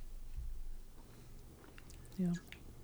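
Someone eating ice cream: faint, wet mouth and chewing sounds over a low background hum, with one brief, louder squeak-like smack near the end.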